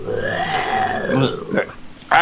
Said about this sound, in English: You make me burp more now.